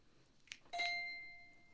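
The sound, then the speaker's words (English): A handbell is struck once with a mallet in the staccato malleting technique, a sharp knock giving way to a clear, bright ring that fades gradually. A soft tap comes just before, and no one speaks. “Let's start with malleting. Malleting is a staccato sound.”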